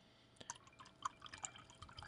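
pouring a drink

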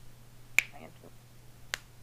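finger snapping

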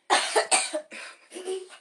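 cough

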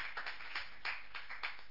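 audience clapping

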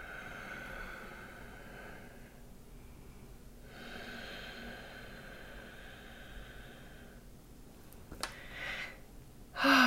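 deep breathing exercise

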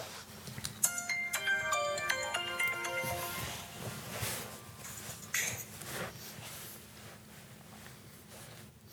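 mobile phone ringtone

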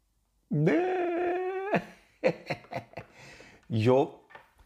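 dog growling and whimpering

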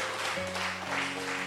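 audience clapping

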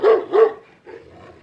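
dog barking sound effect

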